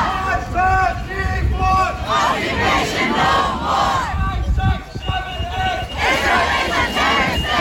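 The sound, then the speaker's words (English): A large crowd of hundreds of students and activists marching through the West End streets of Glasgow in support of the people of Palestine chants loudly in rhythmic unison, many voices rising and falling together in repeated slogan patterns, with a dense babble of shouting underneath throughout. “Students in Glasgow today have been marching through the West End streets in support of the people of Palestine.”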